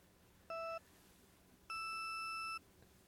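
Race countdown beeps from a kart racing video game at the start of a time trial, as a stoplight comes down: a short electronic tone, a pause, then a longer, higher-pitched beep signaling the start. Clean, loud and isolated, with no talking.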